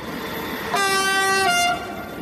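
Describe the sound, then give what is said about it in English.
A steady rumble of a moving train, with a loud, sustained horn blast sounding for about a second before fading back into the rolling noise. No voices. “We'll leave it there and take one last trip on the metaphorical train to Brussels.”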